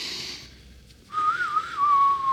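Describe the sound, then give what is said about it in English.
A person whistles a single wavering, breathy tone for about a second, pitch wobbling unsteadily before flattening out, fairly loud after a brief hiss and pause. “I mean, this is the third time we're whistling now.”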